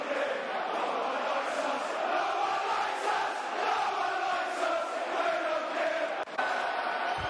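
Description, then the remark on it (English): A football stadium crowd in uproar during a Brentford match, demanding that a player be sent off after a push and shove in the middle of the pitch: a dense, continuous roar of thousands of voices, loud and steady throughout, with shouts and jeers blending into one wall of noise. “The crowd wants someone sent off out. I didn't see the incident. This is the den. Suddenly it goes into pandemonium.”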